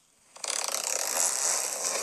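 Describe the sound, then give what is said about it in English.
A zip is pulled in one long, continuous stroke, a bright ratcheting rasp of tiny rapid clicks that starts abruptly and holds steady to the end, with no voices. “He's got a zip sound.”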